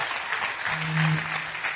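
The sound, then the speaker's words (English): An audience claps steadily to welcome four guests, a dense wash of many hands with no break, while a low steady hum runs beneath the applause midway through. “Big round of applause.”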